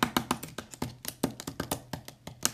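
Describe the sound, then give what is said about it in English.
A quick, uneven series of sharp plastic taps and clacks as a pen smacks a computer keyboard, not typing, about twenty hits over a few seconds with no voices. “I wasn't even typing. I was like smacking my keyboard with a pen.”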